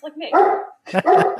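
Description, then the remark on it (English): A dog barks twice in quick succession at a FedEx delivery driver, loud, each bark drawn out and slightly whiny with a short pause between them. “And now she won't stop because she has to get the last word in.”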